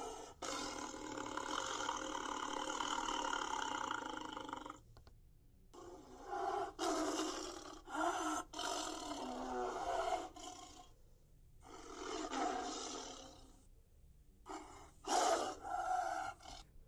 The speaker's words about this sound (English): In my mind, dragons can make any sound they want to make. They can sound like an elephant. A lion. A tiger.